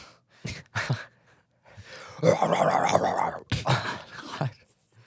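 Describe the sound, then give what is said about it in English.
Chihuahuas snarl and growl in a rough, sustained rumble, broken by sharp yapping barks before and after, fairly loud. “The hell is that? Chihuahuas.”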